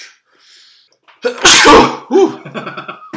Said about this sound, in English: it's our first podcast sneeze. That... excuse me.